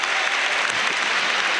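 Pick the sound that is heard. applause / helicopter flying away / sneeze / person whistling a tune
applause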